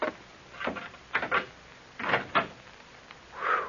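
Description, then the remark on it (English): A door is worked open with a series of scraping rattles and knocks, pausing between efforts, then a final drawn-out creak as it swings. No one speaks. “This is the door, I think.”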